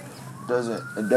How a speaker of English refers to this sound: Why the fuck is there like sirens in the background? Someone die or get shot or something?